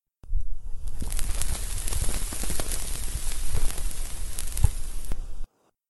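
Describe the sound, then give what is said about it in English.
A sheet of stiff bond paper is crumpled and crackled continuously for about five seconds, a dense hiss of sharp pops and snaps that mimics a crackling fire, as done for radio show sound effects, with no voices. “That's how they reproduce the crackling of a fire on some radio shows.”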